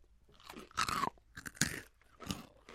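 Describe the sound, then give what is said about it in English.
Crunching on crisp Moon Cheese puffs, little cheese puff balls, with several sharp, crackly bursts of chewing separated by brief pauses. No voices are heard. “to point out to our listeners out there, the moon cheese is little puff balls and doesn't look like a chip at all.”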